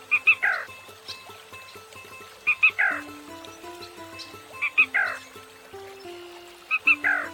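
A male black rail's sharp three-note territorial and mating call rings out four times at steady intervals of about two seconds, clear, over a soft, low musical background.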